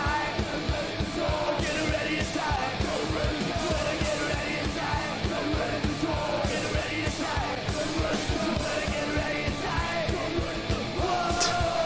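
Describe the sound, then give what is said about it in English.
A crowd at a press conference yells and cheers continuously over loud, driving music with a steady pounding beat, the shouting dense and unbroken for the whole stretch. “The crowd are enjoying it.”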